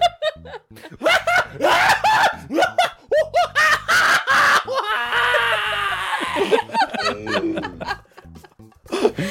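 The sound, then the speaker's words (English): A voice imitates a frantic monkey on fire, with rapid rising and falling hoots building into a shrill, sustained screech, then trailing off into choppy yelps, mixed with laughter. “can you do a monkey on fire? Go.”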